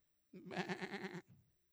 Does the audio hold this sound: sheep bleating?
yes